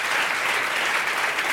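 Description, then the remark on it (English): An audience applauds steadily, with dense overlapping claps blending into a bright, even wash of sound that holds its loudness throughout the short stretch, with no voices standing out. “So I know that why you clap.”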